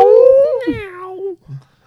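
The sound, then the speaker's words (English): A person lets out a loud, drawn-out yowl imitating a cat, wavering and slowly falling in pitch for over a second, followed by a short low vocal grunt. “You should have asked him that like a cat.”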